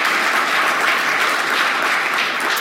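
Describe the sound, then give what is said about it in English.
A crowd at a Senate meeting claps steadily in sustained applause to welcome guests, a dense, even patter of many hands at a fairly loud level, with no voices breaking through. “So let's give them a round of applause, shall we, for welcome them.”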